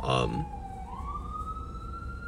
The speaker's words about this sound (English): There's some sirens, if you hear that. Yeah, there's an ambulance coming by.